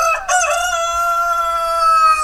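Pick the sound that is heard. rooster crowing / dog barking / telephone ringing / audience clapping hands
rooster crowing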